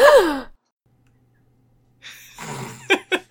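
A short, voiced gasp with a falling pitch rings out, followed by a second of silence, then breathy rustling and a few quick, choppy bursts of breath.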